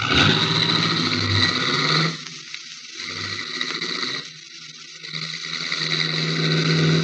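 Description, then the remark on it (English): A car engine roars and revs hard, dips briefly, then surges again as the vehicle accelerates away. No voices are heard. “In that case, we will use your car instead of mine, and you can be the chauffeur. Step on it.”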